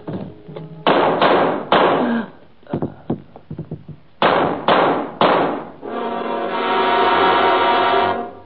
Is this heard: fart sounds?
no